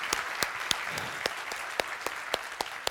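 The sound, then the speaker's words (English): A church audience claps steadily one morning, giving the Lord a hand clap after praise and worship, with sharp individual hand claps popping out above a dense wash of applause. No voices are heard. “And can we give the Lord a great hand clap this morning for that praise and worship?”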